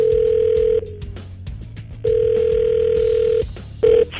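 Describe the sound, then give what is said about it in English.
An outgoing phone call's ringback tone as callers phone a woman to get answers from her: a steady, clear electronic ring sounds twice with pauses between, and a third ring starts briefly before cutting off. No one speaks. “We are going to call her up and try to get answers from her.”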